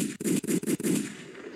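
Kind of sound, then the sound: sound effect, gunshot sound effects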